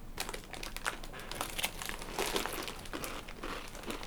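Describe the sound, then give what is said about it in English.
Continuous crunching and chomping on a crunchy snack, a dense run of sharp crackly bursts with no pauses and no talking, steady and fairly loud for the whole stretch. “You're fucking incessant chomping and crunchy, nigga.”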